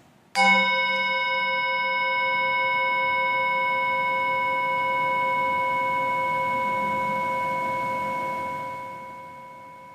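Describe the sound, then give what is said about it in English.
A single chime is struck once and rings out clearly, its bright layered tones sustaining for several seconds before slowly fading, with no voices present. “As we listen to the chime, let us remember our connection to each other and the world around us.”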